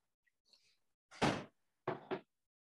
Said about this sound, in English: Hold on, let me close this door.